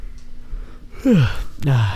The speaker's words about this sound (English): Yawning. This is a late night episode if you can't tell.